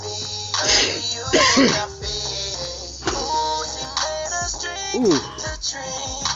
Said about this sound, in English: So, y'all, I'm coughed up a lung for y'all.